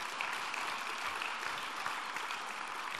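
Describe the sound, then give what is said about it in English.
Steady, dense audience applause welcoming speaker Charlie Miller, many hands clapping continuously at an even, fairly loud level throughout, with no voices standing out. “Charlie Miller, give him a big round of applause.”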